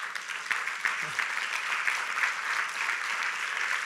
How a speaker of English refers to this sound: You're clapping for that savior of your soul. You're clapping for the one who is living gloriously through you.